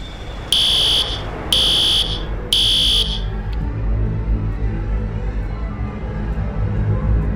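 A fire alarm blares in three loud, evenly spaced high-pitched bursts, each lasting about a second, over a steady low rumble of background noise that continues after the alarm stops.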